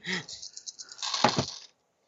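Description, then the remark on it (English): Dice clatter and rattle across a hard surface for about a second, moderately loud, after a brief voice at the start. “I'm spending point of edge to double my dice.”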